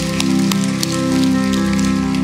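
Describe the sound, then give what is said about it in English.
A crowd applauding, with dense, steady clapping that stays loud throughout, over a sustained low musical tone. No one speaks. “Come on, let's give these a round of applause.”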